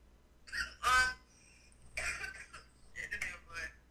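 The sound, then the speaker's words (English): Several spluttering coughs from a person after something went down the wrong pipe: a strong, raspy burst early on, then a few weaker hacking coughs spaced out over the next few seconds, with no talking. “Went down the wrong pipe? Put your hands up. Put your hands up when you cough.”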